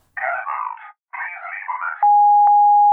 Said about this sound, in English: No, look, it's just the phone. Well, it should be unplugged. It's all right. Look, the machine's underneath. Let the machine pick it up.